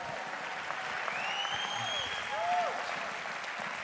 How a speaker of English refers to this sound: If you're thankful for that, let Jesus hear your great hand clap in his house.